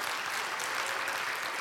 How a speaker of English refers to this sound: So, can you give me a round of applause for our volunteers here?